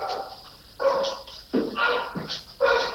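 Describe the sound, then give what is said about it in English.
Dogs bark loudly, a run of four or five sharp, overlapping barks coming in irregular bursts over a few seconds, with no one talking. “Those dogs are... You're right. Sorry. You're right. No, oh, are they really loud?”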